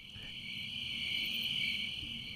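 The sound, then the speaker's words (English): Steady, high-pitched cricket chirping fills the space in a dense, continuous trill, with a faint low rumble of background ambience beneath and no voices. “I can't wait to see the coloring book section, right? Like, I was just, and crickets.”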